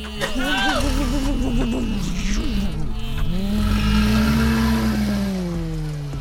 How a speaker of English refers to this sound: Why did we get the good car? I don't know. It starts up so beautifully. Oh, yeah. Like, no chugga-chugga at all.